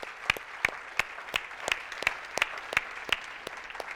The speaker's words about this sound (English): How many of you can give the Lord a loud hand clap?